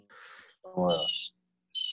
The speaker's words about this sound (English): Is that a bird, my nigga? Is that a hawk? What the fuck is that?